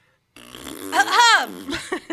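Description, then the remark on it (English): A voice makes a drawn-out, buzzing imitation of a fart, rising and falling in pitch, followed by a couple of short, sharp bursts like a quick cough meant to cover it, fairly loud. “Yeah, like you make a fart noise and I'll do a cough.”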